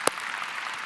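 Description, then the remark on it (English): A crowd applauding over 500 Christmas gifts given out to single women and widows, with one sharp clap standing out at the start over a steady, dense wash of many hands clapping together at a moderate level. “That's worth clapping for, I think, again.”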